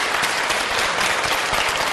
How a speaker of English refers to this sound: Listen as they're introduced here. Now, please join me in a warm applause to welcome the General Secretary and other Political Bureau Standing Committee members.